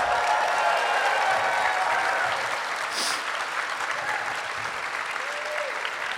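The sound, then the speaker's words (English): An audience cheers and claps steadily for someone who has just torn into another person, a dense wash of applause that stays loud and full from start to finish with a few brighter whoops rising out of it. “They're cheering for Michael tearing into you.”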